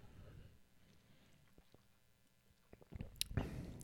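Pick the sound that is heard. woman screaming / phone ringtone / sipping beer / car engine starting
sipping beer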